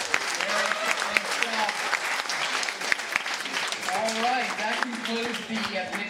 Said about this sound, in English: let's give a round of applause to Hillary and Minor Minus